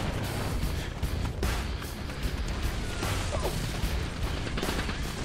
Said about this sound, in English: The sound of a door opening and more gunfire, bombs, and death roar.